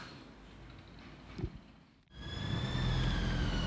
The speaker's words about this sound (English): That's like the third siren I've heard go past the office this afternoon. I hope everyone's okay.